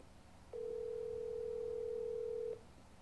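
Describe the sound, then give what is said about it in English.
A single steady ringback tone from a phone call on speakerphone sounds for about two seconds over a faint background hum, with no one talking. “See, there's already too many rings.”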